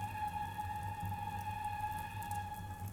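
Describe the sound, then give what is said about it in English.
A train rolls by with a steady low rumble beneath a sustained, high tonal whine that holds at an even level for the whole stretch, with no voices. “You hear the train?”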